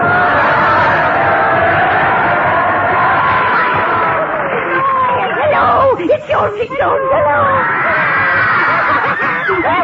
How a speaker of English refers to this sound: Those are screams of horror.